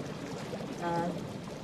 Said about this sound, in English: Why is that water bubbling?